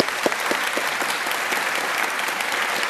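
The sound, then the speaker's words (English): A debate audience applauds steadily, a dense, even wash of many hands clapping that holds at a consistent, fairly loud level throughout, with no one speaking. “Please join me in thanking Seth with a big round of applause.”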